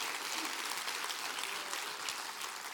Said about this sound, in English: Oh, hallelujah. Clap your hands real big.